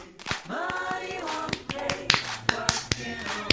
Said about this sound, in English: I forgot how many claps. Oh no. How many is it? Oh no.